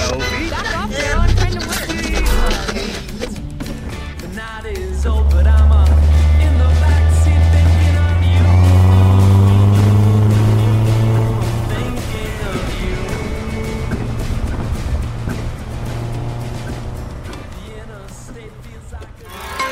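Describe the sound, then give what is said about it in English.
A car engine turns over and catches as someone in the front seat starts the car, a deep rumble that swells and revs upward before settling into a steady idle, fairly loud, with faint murmuring in the background. “And with that, the mysterious stranger climbs into the front seat, turns on the car, and turns off the lights.”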